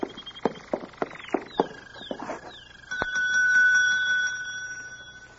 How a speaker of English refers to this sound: There's a bell over in the desk. It might be a help.